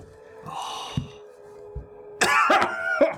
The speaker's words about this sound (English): Coughs up black tar because he's poisoned. He was rolling at disadvantage, and also some blood because he's at 3 hit points.